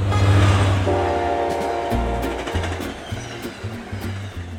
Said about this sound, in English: And I sit under it in the afternoon and evening and just accompanied by this gentle buzz, which almost drowns out the train line running along the bottom of the garden.